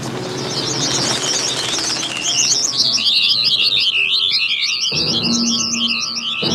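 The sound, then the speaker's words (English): A dense flock of birds chirps and twitters continuously, their rapid warbling calls overlapping loudly throughout, with a faint low rumble underneath and no voices. “It's only birds.”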